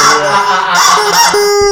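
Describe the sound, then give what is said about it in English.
A rubber chicken toy held by a man lets out a long, loud, raspy squawk that wavers in pitch and rises sharply at the end, with no talking. “He's holding the rubber cock.”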